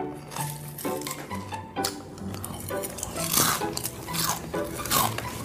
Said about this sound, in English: Oh my God, could you chew any louder?